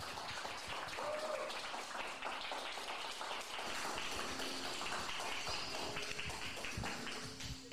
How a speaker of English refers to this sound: So I want you, everybody, please put your hands together for my first guest and a good friend of mine,